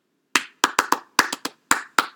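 A high five, then a person claps their hands about nine times in a quick, slightly uneven rhythm, each clap sharp and crisp with a short decay, with no talking.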